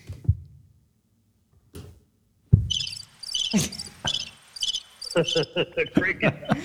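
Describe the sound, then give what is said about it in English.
A few low thumps and clicks give way to a steady, rhythmic cricket chirping, bright repeated pulses that sound close and fairly loud, with no talking over them. “The cricket button.”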